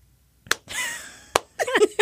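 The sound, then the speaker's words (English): Two loud, sharp hand claps land almost a second apart in a slow, deliberate rhythm, a slow clap given as a shout-out to Ed Skrein, with a sustained hissy tonal sound between them and voice-like sounds rising after the second clap. “So we just want to give a nice brief shout out. Slow hand clap.”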